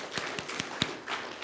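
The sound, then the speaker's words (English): A soft golf clap in a church, celebrating news of a donated playground: four quiet, sharp claps spaced evenly about a fifth of a second apart, followed by faint background rustle with no talking. “Golf clap.”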